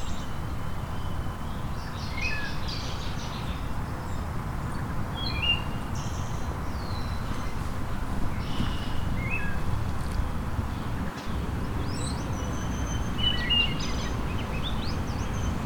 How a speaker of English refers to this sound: So there would be crowned kinglet again.